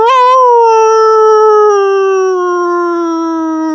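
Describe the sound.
A person imitates a dog's howl: one long, loud, sustained wail that starts steady and slowly sinks in pitch over several seconds, with no talking around it.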